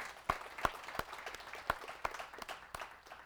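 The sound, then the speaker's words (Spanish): An audience applauds the teachers: a dense patter of many hands clapping, with a few sharper, louder claps standing out irregularly over the steady wash, moderately loud and with no one speaking. “Un aplauso a nuestros maestros.”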